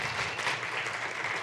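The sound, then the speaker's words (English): An audience breaks into steady, dense applause to show its love for a household watching from home, many hands clapping together in a continuous, fairly loud wash of sound with no talking over it. “Can you say we love them with a big applause?”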